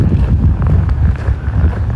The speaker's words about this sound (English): Yeah, so there's a bit of breeze, as you can probably hear, and it's a little cool, not bad.